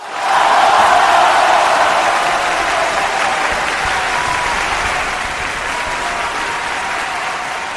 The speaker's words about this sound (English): so I'm going to give you a round of applause.